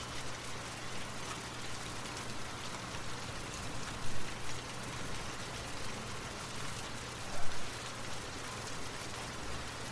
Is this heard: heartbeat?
no